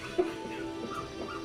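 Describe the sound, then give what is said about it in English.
Dogs whimpering and yipping in high, thin whines that run steadily for a moment, with one sharper yip near the start, fairly quiet and with no one speaking. “It's fucking dogs!”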